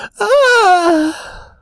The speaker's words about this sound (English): As you're walking over, Molly lets out a big yawn.